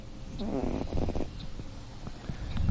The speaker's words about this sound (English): I'm just listening to the cat.